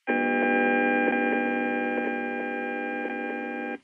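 Bluetooth emissions measured from a device and rendered as sound by a computer program: a steady, loud electronic drone layered with harmonics, punctuated by faint irregular clicks and ticks, continuing unchanged for a few seconds with no voices.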